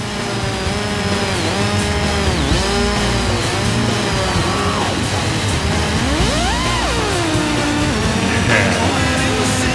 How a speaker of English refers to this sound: And then this chainsaw solo. Give it up for this for a second. Like, what is this solo?